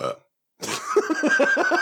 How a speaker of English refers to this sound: Do you collect burps? There's one for you.